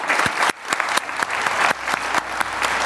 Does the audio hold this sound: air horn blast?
no